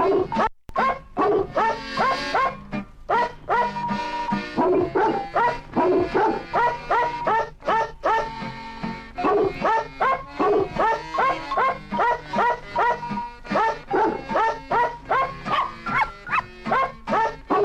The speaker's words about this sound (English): They were trailblazers in the musical canine field. So let's just have a quick listen to their work.